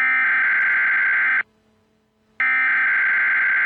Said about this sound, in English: This alarm is to inform you to not be alarmed.